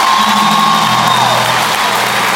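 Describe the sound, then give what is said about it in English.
A large crowd claps and cheers loudly, a dense, continuous wash of applause with whoops mixed in, filling the whole moment without any clear talking. “Come on, clap your hands one more time and listen to it.”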